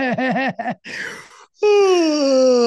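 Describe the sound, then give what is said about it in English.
A person takes an exaggerated yawn with big breaths: a wobbly voiced warble, a breathy intake, then a long, loud groaning exhale that slowly drops in pitch. “Big yawns, and she's like, what is going on?”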